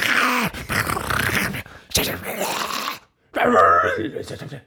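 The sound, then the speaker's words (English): A person mimics wild wolves, letting out three loud, rasping bursts of growly groans and grunts broken by brief silences, with no words spoken. “Like, those are the noises they make.”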